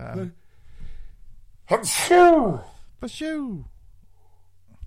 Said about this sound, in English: I got a sneeze brewing.